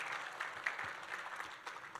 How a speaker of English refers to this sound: Let's give the Lord another clap offering, if you would, please. Praise God.